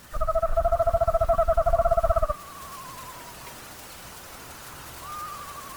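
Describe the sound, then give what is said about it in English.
Screech owls call back and forth in response to pre-recorded owl calls from a field loudspeaker: a loud, rapid trembling trill for about two seconds, then fainter owl whistles answer softly in the distance, one sliding down and another rising later, over a steady rain-like hiss. “A sustained period of call and response, reminiscent of a soloist and a church congregation.”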